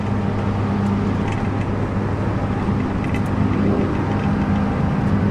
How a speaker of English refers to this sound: So here it is. The combine is pulled up right next to us. I'm just making way across the field, trying not to fall over.